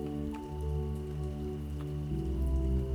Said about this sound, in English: And tonight, her music is the rain.